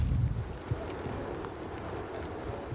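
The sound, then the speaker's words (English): A steady roar of the ocean fills the air in late June, a constant low rumble with wind buffeting the microphone, especially strong at the start. No one speaks. “So you can hear the roar of the ocean now.”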